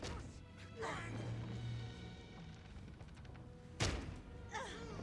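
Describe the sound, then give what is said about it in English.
In a busy, noisy film scene set in Bangkok and shot on an interior set at Frogmore, a sudden loud crash of breaking glass hits near the end as people burst through a window, with brief shouts and scuffling around it. “Yeah, here they come through the window.”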